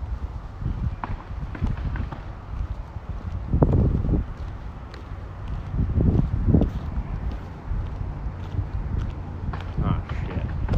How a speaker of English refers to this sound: Oh, it's nail. It's a nail gun. I knew it wasn't a gun, but I was like, what's the noise? And I was like, oh, they're on the roof.